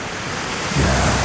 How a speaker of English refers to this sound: Here's the ocean.